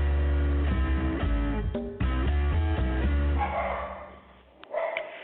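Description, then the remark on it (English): The host's pet dog barks a couple of short times near the end, heard over the tail of a steady instrumental tune that fades out beneath it. “This is Readers Entertainment Radio, and already my dog is saying welcome.”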